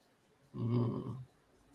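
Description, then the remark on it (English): A voice imitates a loud, heavy respirator breath like Darth Vader's, one raspy, hissing inhale-exhale lasting under a second, otherwise quiet. “I can breathe fine, right? It's loud like Darth Vader, right?”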